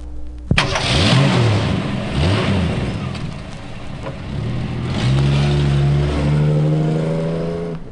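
A car engine starts abruptly and revs up and down a couple of times, then settles into a steady, rising drone as the car pulls away. Loud, with no talking.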